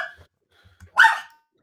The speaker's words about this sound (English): This dog is crazy.